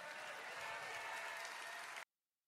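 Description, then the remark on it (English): An audience applauds steadily, a dense wash of many hands clapping at an even, loud level for about two seconds before cutting off abruptly into silence. “Now, and here, I know they're applauding, and I do feel for him.”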